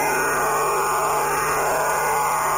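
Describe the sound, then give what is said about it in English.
A phone-modulated multi-channel vocoder intruder signal, designated M7B, on shortwave: a steady, dense, buzzing warble with faint whining tones riding on top, loud and unbroken throughout, with no one speaking. “Intruder M7B phone modulated multi-channel vocoder system.”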